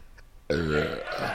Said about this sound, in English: Oh, very triumphant. I burped. You did.